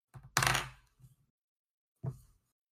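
A hand bangs against a microphone while trying to roll dice for a dexterity check: a loud, sharp thud with a brief ringing decay, framed by a couple of softer knocks and one more bump a moment later. No one speaks.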